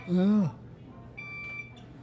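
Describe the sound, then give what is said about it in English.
A short burst of voice is followed by a single steady, high-pitched electronic beep lasting just over half a second, moderately soft against a quiet background. “What's that beeping noise, do you know?”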